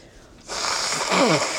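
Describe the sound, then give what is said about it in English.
A single sneeze: after a brief quiet moment, a loud breathy burst of air bursts out, ending in a short voiced, falling sound. No one talks. “Oh, let me possibly sneeze. I'm not sure yet. This is better than coughing.”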